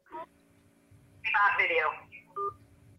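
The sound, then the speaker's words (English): Telephone tones as a caller's phone number is called back: a short beep, then a longer warbling burst of dialing tones, and another brief beep near the end, all clear over a faint low murmur. “So I'm going to call, or I'm going to answer it on here.”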